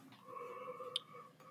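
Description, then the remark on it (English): A quiet, drawn-out yawn: one steady, breathy moaning tone held for over a second, with a small click just before it trails off. “Excuse my yawning.”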